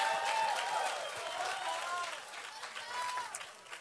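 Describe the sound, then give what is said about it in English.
An audience claps steadily while many voices shout and cheer together in answer to a call for a hand clap and a shout, a dense, sustained roar of crowd noise that swells and dips slightly over a few seconds. “Come on, if you believe it, come on, hand clap and a shout.”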